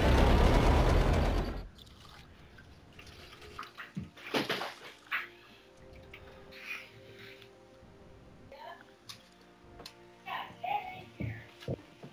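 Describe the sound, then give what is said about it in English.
A dog laps up water with glop in it, starting after a short loud rush of running water, then irregular wet slurps and splashy licks, with quiet gaps between bursts. “So he's drinking the water with the glop in it.”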